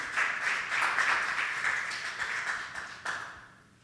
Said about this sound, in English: Do one more round of applause for just our worship this morning.